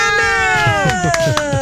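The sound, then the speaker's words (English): A kitten named Donna Mills gives a long, drawn-out meow that slowly slides downward in pitch, with a few soft clicks and faint background murmur beneath it. “But we can tell you the name of the kitten.”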